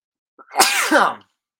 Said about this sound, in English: Oh, I'm going to sneeze.